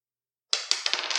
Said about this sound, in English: I gotta get a 6 plus. All right. I'm rolling 4 dice. Oh, yeah, 6.